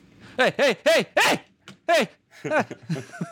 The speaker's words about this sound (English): He said dog is audible, but it's not super distracting.